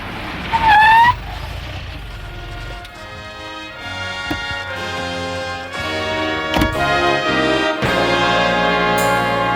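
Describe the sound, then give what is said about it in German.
A police patrol car approaches and pulls up, with a brief rising whoop near the start. A sustained tonal drone follows and holds steady to the end. No one speaks. “da kommt ein Streifenwagen.”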